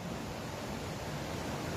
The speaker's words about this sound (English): Unfortunately, I will not be in Florida anymore next time. But hopefully you enjoyed it. Hopefully you enjoyed the waves here.